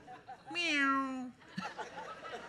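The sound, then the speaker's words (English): A person's voice imitates a cat, letting out one drawn-out, wavering meow that rises and falls before trailing off, followed by faint background voices and a brief soft sound. “I'll be like a kitty cat on a cold night.”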